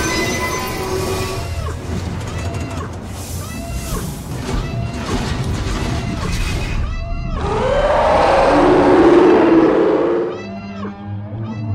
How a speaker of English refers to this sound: A distinctly un-American sounding siren.